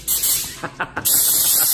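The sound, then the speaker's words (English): A loud, steady hiss of air blasting from the nozzle of an orange air compressor, broken by three quick puffs midway before the continuous blowing resumes at full strength. “And the unique thing I like about the setup you have here is that orange air compressor looking thing.”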